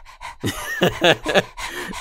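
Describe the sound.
A person imitates the panting of a husky / German Shepherd mix dog named Dodger Hong, with a quick run of breathy huffs mixed with a few voiced, whiny tones, loud and alone for about two seconds.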